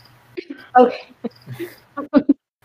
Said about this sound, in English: I hear a cricket, though. Oh, yeah, no, there's one in my dragon's cage, and I can't find it, and he can't find it, so.